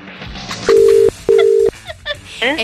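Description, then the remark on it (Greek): A phone line sounds two long, steady electronic tones in a row as a call placed by the Show Cafe Morning Show goes through, then a few brief, faint voice fragments follow. “Καλημέρα, σε καλούμε το Show Cafe και το Show Cafe Morning Show,”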